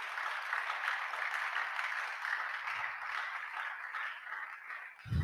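A crowd claps steadily and continuously, a dense wash of many hands with no voices on top, holding at an even loudness before a brief dip and a burst near the end.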